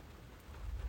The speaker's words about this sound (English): Yeah, it's drizzling. Well, I think it's getting harder.